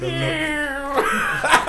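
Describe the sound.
A person imitates a cat with one long, drawn-out nasal meow held at a steady pitch, then breaks off into a short breathy, noisy burst.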